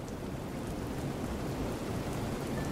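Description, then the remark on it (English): Heavy rain beats steadily against a window, a dense, continuous patter with a low rumbling undertone, loud throughout with no voices. “One night, when the wind was blowing and the rain was beating hard upon her window, Hilda could hear the horn warning the sailors off the rocks.”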